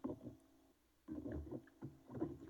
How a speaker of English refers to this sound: Is one of you guys just slapping your microphone around aggressively? It's probably the dog slapping his stupid chew toy close to my computer.